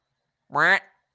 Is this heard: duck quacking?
yes